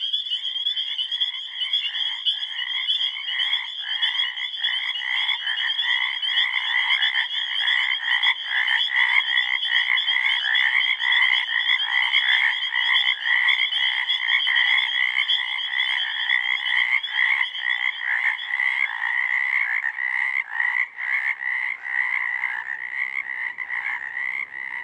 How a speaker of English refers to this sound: All land vertebrates have a larynx, the muscular top end of the windpipe. Frogs turned this protective valve into a singing reed.